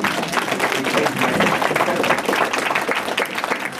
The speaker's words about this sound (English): So, applaud that.